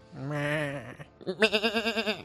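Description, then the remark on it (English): Two loud sheep bleats in a row: a steady, drawn-out baa, a short pause, then a second one with a quick, wavering tremble. “So, now we move on to Montana, where the men are men and the sheep are nervous.”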